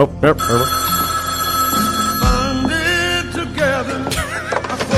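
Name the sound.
telephone bell ringing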